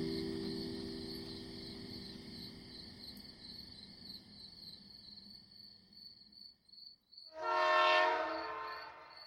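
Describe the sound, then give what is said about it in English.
A CSX freight train, 150 cars and a mile and a half long, loaded with coal and bound for Charleston, South Carolina, rumbles low and steady at 50 miles per hour around 4 in the morning beneath a constant chorus of crickets, then a loud horn blast sounds for about a second before fading. “The CSX freight train was 150 cars long.”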